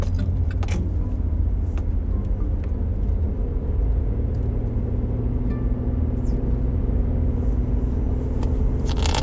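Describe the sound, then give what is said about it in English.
Steady low rumble of road noise from inside a moving car, constant, with occasional faint clicks and light rattles like keys jangling over the engine drone. “As I'm driving, too.”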